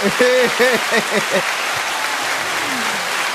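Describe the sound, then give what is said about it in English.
An applause sound effect played from a soundboard: a burst of crowd applause, dense steady clapping that runs for about three seconds, with voices calling out over it during the first half before it settles into clapping alone. “Which one of these motherfuckers is applause?”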